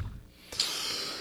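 a cough

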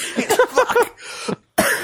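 coughing fit

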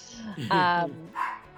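dog barking

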